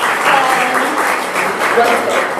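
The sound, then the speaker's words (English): A burst of steady audience applause, loud and dense with many hands clapping at once, holding an even level throughout with a few faint voices mixed in. “Big round of applause for all of our wonderful.”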